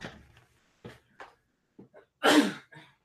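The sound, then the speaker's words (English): A single loud sneeze from a man bursts out after a few short, quiet breaths and catches, followed by a brief exhale. No one speaks. “I heard him sneeze.”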